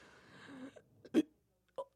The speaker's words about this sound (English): Inside burp.